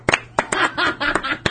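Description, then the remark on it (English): Several sharp hand claps land at an uneven pace, loud and crisp, with soft laughter or vocal sounds filling the gaps between them. “Yeah, applaud the cock.”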